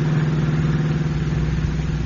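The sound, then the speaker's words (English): A car engine drones steadily as the car swings into an old, little-used highway and speeds into the country, a continuous low hum with a strong, even pitch and no pauses, loud and alone without any voices. “Reaching the end of the waterfront road, the car swings into an old, little-used highway and speeds into the country.”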